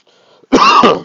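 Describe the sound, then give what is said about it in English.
A single loud cough, harsh and throaty like a throat clearing, starting after a faint murmur of background noise and lasting about half a second. “That wasn't a Corona cough, by the way.”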